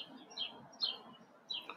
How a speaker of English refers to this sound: Sorry for the birds. The birds are serious out there. I like birds, though, man. Birds is a lot of different. It's signals, you know what I'm saying? Signals of, well, morning.